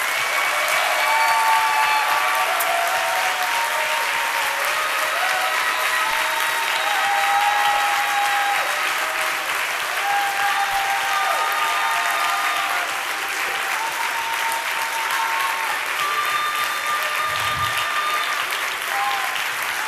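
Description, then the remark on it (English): A large church audience claps in worship of God in a steady, dense roar of applause that holds strong for the full stretch, with faint cheering voices mixed in underneath. “Now, like never before, give him the best hand clap you can.”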